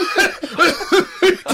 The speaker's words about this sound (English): And he starts laughing and coughing at the same time. It's just great.